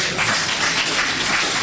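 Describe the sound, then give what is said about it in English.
An audience claps steadily for CDD, a dense, even wash of many hands with no pauses or talking throughout, fairly loud and sustained. “So let's put our hands together for CDD. Please, there'll be a lot of clapping, so you better get used to it.”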